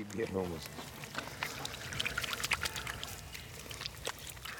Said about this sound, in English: Yura and Volva take turns pouring water onto each other's hands to clean up